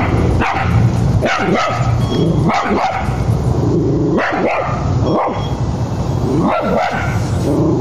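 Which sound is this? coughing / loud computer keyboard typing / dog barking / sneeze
dog barking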